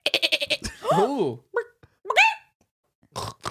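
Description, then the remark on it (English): A person imitates a goat with a wavering, quavering bleat, preceded by a rapid burst of stuttering clicks and followed by a shorter second bleat, fairly loud. “Now, the first one was a goat, and I can't do it again.”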